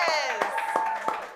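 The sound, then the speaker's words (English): A live studio audience in a full packed house applauding at Comedians Interviewing Musicians: a few steady, evenly spaced claps ring out while voices cheer and whoop over them, the sound staying loud and lively throughout the short burst. “So give really a round of applause.”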